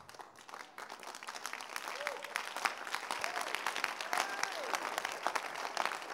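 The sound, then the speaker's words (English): An audience claps steadily for several seconds, a dense crackle of many hands that swells slightly, with a few faint voices calling out in the crowd. “Listen, don't clap.”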